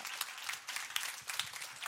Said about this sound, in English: Now clap, clap.